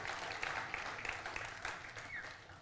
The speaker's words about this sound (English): Round of applause for this guy.